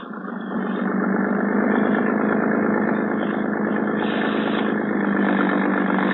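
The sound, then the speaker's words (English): A steady, rumbling motorboat engine idles at a harbor police dock on a dark night, its low throbbing drone continuous and even throughout, with no voices heard. “When Sergeant Malva finally arrived at the harbor police dock, a boat was ready for us.”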